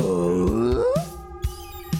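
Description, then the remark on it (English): A man's voice imitates the Tim Taylor grunt, a gruff, comedic, low guttural groan that slides upward in pitch into a questioning, throaty tone, then trails off with faint thumps. “And I'll do a Tim Taylor grunt.”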